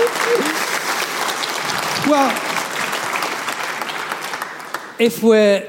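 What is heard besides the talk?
audience applause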